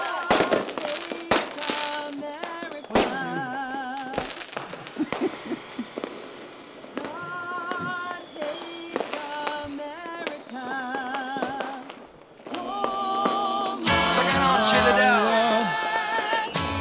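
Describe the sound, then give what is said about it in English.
Fireworks bursting in rapid succession as boxes of fireworks are dropped down: sharp cracks and pops mixed with shrill whistling tones, growing denser and louder toward the end, with no talking. “They're dropping the fireworks on the children. They're dropping the boxes and boxes of fireworks down.”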